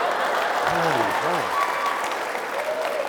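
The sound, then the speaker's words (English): An audience applauds steadily for the whole few seconds, a dense even wash of clapping, with a brief voice rising over it near the start. “No, don't clap.”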